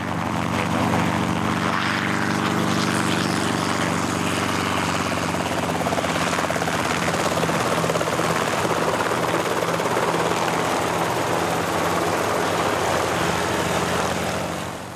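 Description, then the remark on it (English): A 2.5-ton helicopter runs steadily and loudly, its engine whining over a deep, continuous rotor drone with a faint rapid beat, holding constant throughout with no voices. “As far as we're concerned, lift is what we produce to get 2.5 tons of helicopter up off the ground and accelerated into forward flight.”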